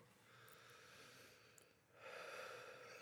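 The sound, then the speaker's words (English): Heavy breathing right up close to the microphone, a long noisy exhale followed by a louder, rougher breath, with no talking. “Breathe into the mic so Katie can pick which one it is.”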